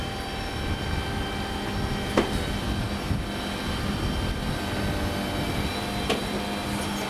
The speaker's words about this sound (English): I don't think I've ever seen a dustbin truck with a crane on it before. Not like that. Well, that's very good. Satisfactory. Stinks though. Ye gods. Does everything have to reek? Noisy buggers. Stinky. Go away.